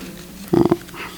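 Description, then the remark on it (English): An audience member in the front row lets out one short, loud, rough growl, like an imitation of a dog, lasting a fraction of a second against a quiet murmur. “I mean, people growl in the front row, thank you.”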